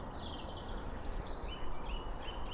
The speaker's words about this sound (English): It's a dunnock there, a squeaky wheel.